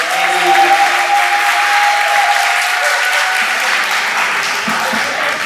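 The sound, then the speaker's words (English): An audience at a Sunday event claps for the women who helped, in a steady, dense round of applause that holds at full strength for several seconds, with a thin high tone briefly ringing through near the start. “I just wanted a round of applause for these wonderful women who helped us.”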